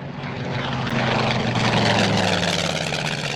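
propeller airplane flying overhead

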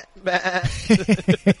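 sheep bleating

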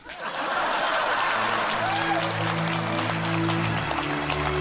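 audience applause

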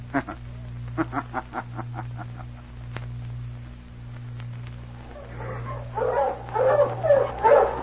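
sled dog team barking

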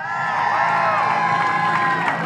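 audience cheering and applause

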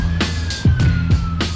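police car siren

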